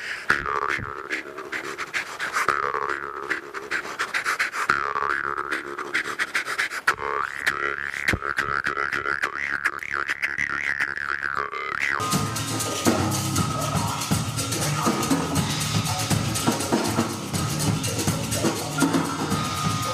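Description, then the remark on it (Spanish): A jaw harp, its frame held against the teeth and its reed struck by hand, plays a steady twanging, buzzing drone, the mouth amplifying the vibration and its overtones warbling as breath adds effects. After about twelve seconds it gives way to a rough, breathy wash of noise. “Entonces se toca de la siguiente manera: tienes que ponerte este marco en los dientes de esta manera, y con esta mano atacas al fleje y con la boca amplificas esa vibración, y con la respiración puedes añadir efectos al instrumento, algo como esto.”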